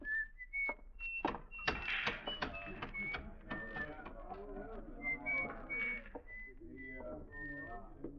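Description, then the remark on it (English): A man whistles a bright, high tune in short, separate notes as he walks down the shady side of a street on a sunny day, while sharp knocking clicks, like footsteps, sound irregularly underneath, with a steady low background murmur. “On a sunny day, you could see him walking down the shady side of the street, whistling and handling the oddments in his little pocket.”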